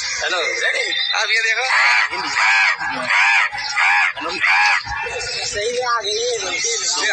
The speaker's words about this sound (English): Yeah. 100,000 crows. 100,000 crows. You said the sky's turning black?